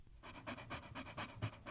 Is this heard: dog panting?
yes